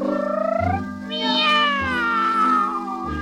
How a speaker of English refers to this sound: But he swears it sounded like two cats, yeah, singing a duet.